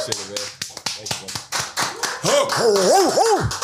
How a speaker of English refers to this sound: Let's give a round of applause for our special guest today, everybody.